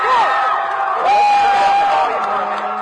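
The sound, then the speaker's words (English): A dense stadium crowd at a football game roars steadily, with individual whoops and loud yells rising above the din before easing into a lower, sustained cheer. “People are yelling, screaming, jumping around for a game that really means nothing.”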